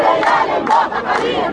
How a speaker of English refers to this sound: Demonstrators gather at the gate of Qasr al-Ittihadiyya, one of the presidential palaces on the outskirts of Cairo.